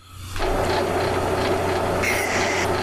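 A train rolls along railway tracks, its loud, steady rumble rising quickly and holding throughout, with a low droning hum underneath and a brief higher screech near the end. No one speaks.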